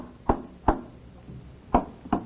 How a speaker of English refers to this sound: At the house on the tiny island, a gray-haired man sits in one corner of the kitchen, hammering tacks into a wooden frame.